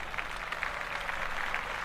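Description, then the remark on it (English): A canned applause sound effect set off by accidentally hitting a clap button: dense, steady crowd clapping with a bright, crackling texture that holds at an even, moderate loudness for about two seconds, with no voices over it. “I didn't mean to hit the clap button.”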